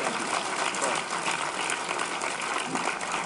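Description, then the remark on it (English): An audience claps together in a steady, dense burst of applause that holds an even, loud level for about three seconds, with no single clap standing out from the crowd. “Let's clap it up.”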